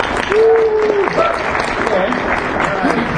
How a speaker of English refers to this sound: Let's have a round of applause for it.